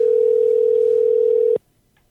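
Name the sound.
phone call ringing tone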